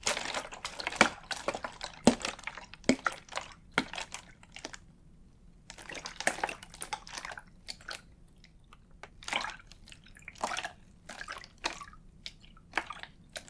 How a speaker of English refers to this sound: It is water. Water from my water bottle.